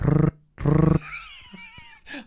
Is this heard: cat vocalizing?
yes